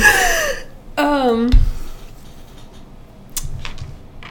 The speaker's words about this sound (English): Sorry, just clearing the throat.